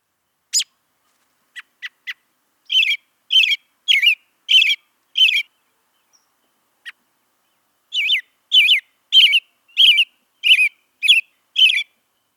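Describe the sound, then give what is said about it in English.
Robin song with an airy, thrush-like quality: a few brief sharp notes, then two runs of evenly spaced, fairly high phrases with a short pause between them, clear with no other sounds. “sometimes an ethereal sound that reminds me of a thrush, which makes sense since they are in the thrush family”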